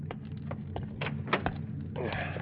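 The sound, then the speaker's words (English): A hitchhiker climbs back into a car: rustling movement and a couple of sharp thumps over a steady low idling hum, then shuffling as he settles into the seat. “force yourself to relax as Joe comes back and climbs into the car”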